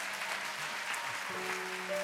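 An audience claps for the soldiers in a steady, dense burst of applause for about two seconds, and a few sustained keyboard notes start up underneath partway through.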